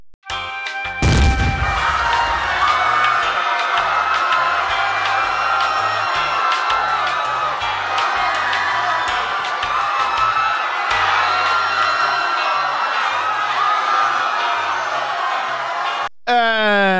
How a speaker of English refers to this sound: And maybe instead of the bomb break music, explosion. Have screaming infidels.